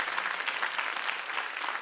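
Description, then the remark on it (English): A church audience breaks into steady applause, giving God a hand clap at the preacher's call, a dense, even wash of many hands clapping at once that holds at a constant level for the whole moment, with no voices standing out. “Come on, give God a big hand clap if you're hearing me.”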